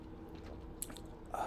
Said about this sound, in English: Allow me to take a sip of this PBR right here. Very refreshing.